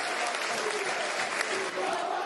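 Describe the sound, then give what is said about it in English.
A steady wash of crowd applause, dense continuous clapping from many Millwall football fans at an even level throughout, with a faint murmur of voices mixed in. “well applauded by the Millwall fans.”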